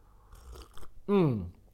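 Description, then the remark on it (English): A quick slurping sip of hot tea from a mug, followed right away by a loud, satisfied voiced "ahh" that slides down in pitch. “For those listening on Apple Podcast, I'm just sipping some tea.”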